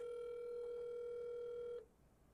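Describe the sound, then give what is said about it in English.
A FaceTime call ringing out: a single steady, buzzy electronic ringback tone at mid pitch holds for almost two seconds, then cuts off abruptly, leaving faint background hiss. “dialing.”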